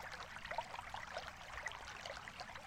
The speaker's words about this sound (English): You hear the noise of a stream, a soothing sound. You are sitting beside that stream on a bed of soft grass.